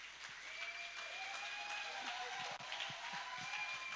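A large crowd claps steadily and loudly to welcome a preacher to the podium, with scattered low thumps of feet stomping and a few faint cheers rising above the sustained applause.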